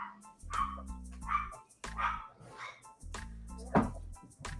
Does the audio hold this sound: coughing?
no